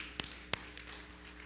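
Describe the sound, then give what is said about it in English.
Two or three soft, sharp claps from an audience giving Job a small clap offering during a Bible reading, spaced unevenly over about a second, quiet and brief, with a low steady hum underneath and no talking. “Let's give Job a little clap offering here, just a baby one.”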